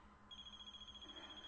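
High-pitched electronic beeping, like a phone alert, starts after a brief pause and pulses rapidly and steadily at a fairly low volume, with no voices.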